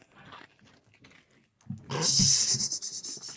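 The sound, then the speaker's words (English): A dog named Tito crunches and chews Goldfish crackers, with wet smacking and panting-like breaths; a quieter, scattered stretch of small sounds comes before the louder chewing. “The dog likes the goldfish.”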